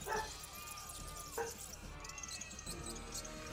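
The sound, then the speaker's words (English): Dogs bark and yip in a few sharp bursts, with a loud bark at the start and another about a second later, over a busy, noisy background with faint voices. “The dogs would react the same.”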